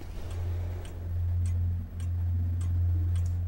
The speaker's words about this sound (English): The ticking. Mm-hmm. I don't know. It's clocks, time in general. However you want to interpret it. I hate like when I hear like a clock kind of ticking. You know what I mean? Because it's kind of like I don't know. I don't like to hear the time pass.